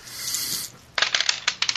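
Dice are shaken with a brief dry rattle for the third roll of the afternoon in a game, then tumble onto a hard surface in a quick burst of sharp, bright clicks and clatters that settle after about a second; the roll totals 11.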